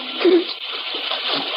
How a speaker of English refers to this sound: See, the water swirling above our knees.